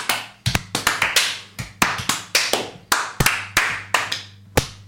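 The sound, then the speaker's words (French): Sparse, half-hearted applause performed on cue as a deliberately unmotivated clap: a loose scattering of sharp hand claps at an uneven, sluggish pace, each crack fading before the next, with no voices. “Et maintenant, on fait un applaudissement pas motivé.”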